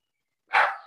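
dogs barking

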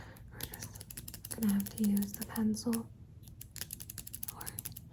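pencil being sharpened

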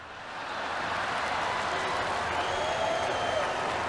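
crowd cheering and applauding

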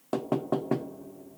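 knocking on a door

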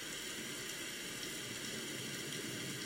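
flowing water

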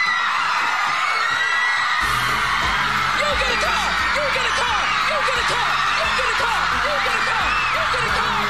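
drum roll

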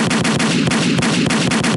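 gunshot sound effects

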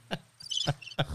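crickets chirping

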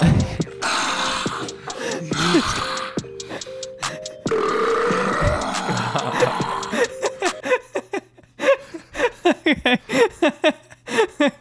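burping

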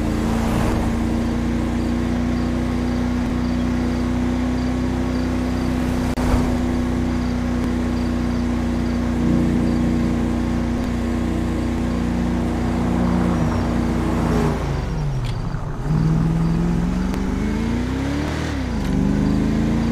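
car engine driving

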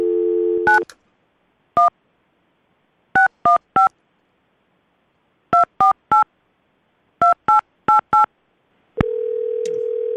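telephone dialing tones

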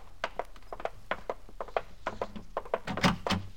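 front door being opened

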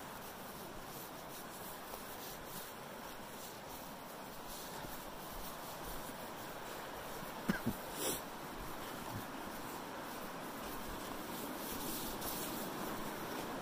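river water

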